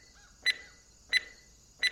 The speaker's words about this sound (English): Well, you could stow that beeping beeper, for starters. I'd wager it's gotten us as far as it's going to, and now it's just alerting everyone to our presence.